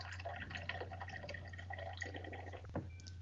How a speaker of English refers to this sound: I'm hoping that's another drink. It sounded like somebody was pretty heavy. No. Sorry, it was. I was topping off my water.